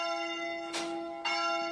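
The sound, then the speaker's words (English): A church bell in a church on top of a little hill on an island, rung by pulling a rope that hangs through the ceiling, rings with a sustained, shimmering tone. It is struck twice in quick succession so the ringing swells anew, with no voices over it. “And you ring the bell of wishes as well, which brings luck in love, and it brings also children.”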